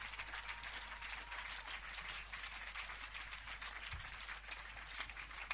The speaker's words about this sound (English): I think you are clapping. Keep on clapping.